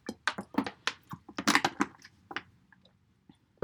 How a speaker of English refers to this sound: I'm just having a sip of my water.